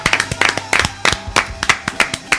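An audience claps in a brief burst, a scattered series of sharp, crisp hand claps landing in a loose, uneven rhythm at moderate loudness, with no talking over it.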